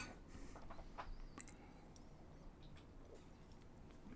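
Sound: glasses clinking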